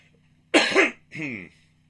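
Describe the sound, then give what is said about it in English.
Two loud coughs in quick succession, the first harsh and explosive, the second slightly softer and more voiced, with no talking around them. “Excuse me, no cough button.”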